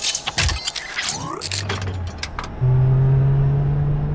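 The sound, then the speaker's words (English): Metallic clicks and jangling rattles, a short low hum, then a race car engine settles into a loud, steady low drone as the power connector engages to charge an empty energy canister, holding to the end. “Maybe we can charge it with the power of my engine. Activating the power connector.”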